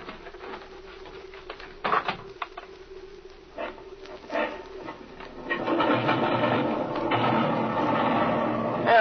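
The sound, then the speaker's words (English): An airplane engine being turned over at an airfield over 7,000 feet in elevation: quiet mechanical clicking and a few sharp clunks, then the motor catches about halfway through and settles into a steady, loud, rumbling roar. “Climb in and turn her over.”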